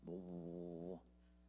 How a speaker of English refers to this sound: I think that might be the organ. Something's giving me a deep hum.